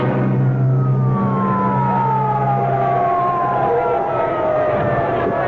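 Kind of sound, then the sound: vehicle, ambulance siren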